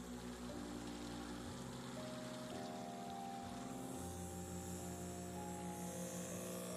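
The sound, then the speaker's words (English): A steady mechanical hum from an ozonator pump with a continuous wash of water bubbling in a bowl, droning evenly throughout without pauses or voices. “It's the sound of the bubbles.”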